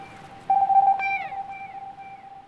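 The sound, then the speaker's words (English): A steady, whistle-like call, sent by Buffy toward the edge of a riverbank by a roaring river, rings out, followed by a sharp click and a falling glide, the tone echoing back loudly off a big rocky cliff. No voices. “She turns her head and sends a sound to the edge of the riverbank. The sound echoes back loudly.”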